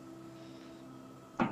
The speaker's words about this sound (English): The stable's not destroyed. Nothing's even on fire. You hear some creaking and wood splintering sounds.